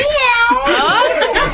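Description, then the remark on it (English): A person's voice imitates a cat, giving a loud, drawn-out meow with a wavering, sliding pitch that rises and falls, with no other talking. “This is a cat.”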